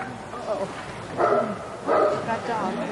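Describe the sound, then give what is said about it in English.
A dog barks sharply a few times in close succession at an old man who tried to pet it, the loud barks standing out over a low background murmur. “So his trip began with a dog barking at him.”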